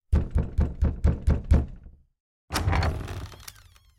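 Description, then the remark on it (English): Six heavy, evenly paced knocks land on a massive oaken door, deep and booming, followed by a short silence and then a longer, rough scraping rumble. “In a few moments, my bare feet were padding up the stone steps, and I stood in front of the massive oaken door.”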